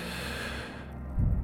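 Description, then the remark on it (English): A slow, deep breath drawn in during a one-minute relaxation breathing exercise, a soft airy rush that fades out and ends with a brief low thump. No one speaks. “Very, very gentle attention on breathing in.”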